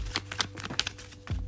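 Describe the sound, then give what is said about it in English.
Tarot cards being shuffled, a run of quick papery riffles and soft slaps in an uneven rhythm, with a low steady hum underneath and no voices. “So basically for the week, actually, I haven't even shuffled through good cards.”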